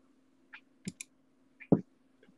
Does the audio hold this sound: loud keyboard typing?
yes